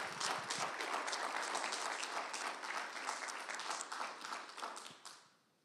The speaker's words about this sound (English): And church, you can clap or say some love.